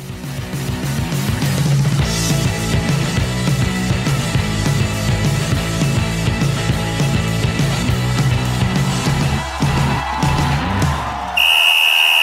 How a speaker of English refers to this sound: That's right, you heard the whistle, and it must be that time again.